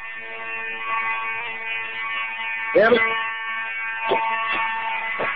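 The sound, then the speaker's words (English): A fire alarm, set off as a false alarm, blares continuously with a harsh, steady buzzing tone that fills the whole scene, while a man briefly speaks over it a few times. “Bizzare Fire Alarm Hoax Ends With”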